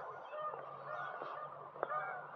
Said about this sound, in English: Boy, these birds are really fighting.